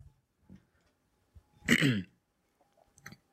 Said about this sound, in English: Why did you bring the mic closer to you to gulp?